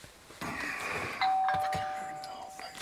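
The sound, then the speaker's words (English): A mobile phone rings with a bright electronic tone, a steady high beep holding for over a second, while people talk over it in a studio. “It's bloody phone, is that? It's my phone, isn't it?”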